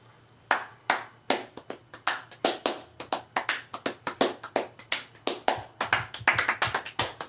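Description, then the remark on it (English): A demonstration of ultra fast hand clapping: a warm-up of sharp crisp claps in a steady rhythm of about three per second that speeds up into quicker, denser bursts of extreme fast clapping near the end, with no voices. “First part is a warm up, and then the second part gets into the ultra fast, extreme, super fast clapping.”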